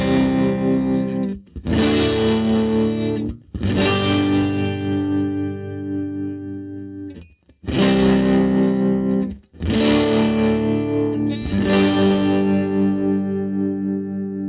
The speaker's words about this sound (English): Bass guitar. My tube amp turned all the way up to the halfway point so the sound would start breaking up without using any distortion pedal at all.